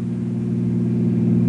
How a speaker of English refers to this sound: Harry watches the speedometer to be sure he's going the same speed that Norman did. Meanwhile, Bill hears the car approaching